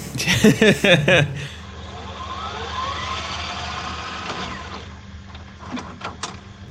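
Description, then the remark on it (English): A lawnmower engine, a neighbor mowing their lawn at 8:30 p.m., drones steadily with a low, rough hum, following a brief burst of voice at the start, then fades slightly as a few sharp clicks sound near the end. “Someone's mowing their goddamn lawn. At 8:30 p.m.”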